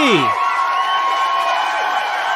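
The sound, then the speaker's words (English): A crowd cheers and claps in a steady, dense roar for a couple of seconds, with a few high shouts rising above the noise at the start, as the show My Fellow Americans opens live from Myrtle Beach, South Carolina, welcoming host Spike Cohen. “Keep clapping. Clap for the miracle.”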